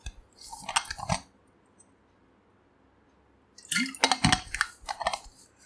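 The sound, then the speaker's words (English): Wet sounds of a person drinking water: a brief burst of sips and swallows, a pause of near silence, then a longer run of gulping and slurping. No talking. “Just a second, let me have some water.”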